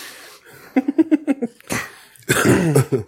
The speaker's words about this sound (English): That's a real cough. It wasn't just for attention